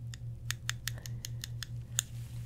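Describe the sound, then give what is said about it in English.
Scissors snip through hair to cut short bangs, in a quick, even rhythm: about a dozen crisp metallic cuts over a steady low hum, with no one talking. “Cut your hair. I think you need a little bit more. Let's give you some bangs, some short bangs, like this short, like up to here.”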